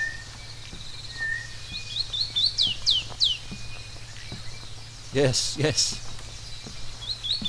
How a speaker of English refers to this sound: I have a switch in front of me now. A button that summons birds. Here they come. Come unto me, birds. Rest easily on your branches. Sing to the heavens. Bring us joy, bring us hope.